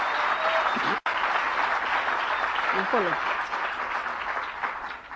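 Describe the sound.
Steady audience applause, a dense wash of many hands clapping, with a brief cut near the start and faint voices calling out beneath it.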